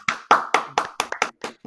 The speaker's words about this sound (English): I think that deserves probably a round of applause, honestly.